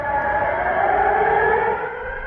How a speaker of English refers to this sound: Today, 1.5 million people defy the Russians by simply going about their day. Interrupted from time to time by sirens and a recorded voice, "Dear citizens, take cover."